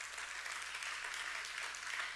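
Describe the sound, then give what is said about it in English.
An audience at a church worship service claps in praise of God, a dense, steady wash of many hands applauding together, sustained, with no talking over it. “Somebody give him a hand clap of praise.”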